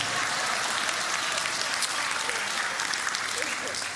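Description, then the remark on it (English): An audience claps steadily for a few seconds, a dense, even wash of many hands with no voices standing out above it. “Some of y'all ain't clapping because you don't like the family you married into.”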